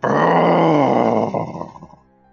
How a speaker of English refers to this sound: And you can hear another animal sound from up ahead. This one turns into this growling roar.